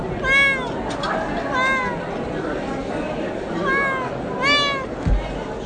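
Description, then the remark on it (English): A kitten in a nest meows four times, short high-pitched cries spaced about a second apart, over a faint background hiss, with a soft thump near the end. “You don't like being in the nest, do you?”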